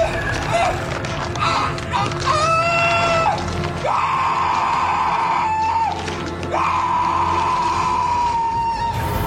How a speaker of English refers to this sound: Yeah, he's great in Garden State. It's a high point of that movie. Here's him screaming.